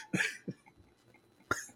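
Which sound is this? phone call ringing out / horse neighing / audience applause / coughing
coughing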